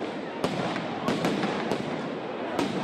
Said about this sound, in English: Police used flashbang grenades to push back crowds in Portland.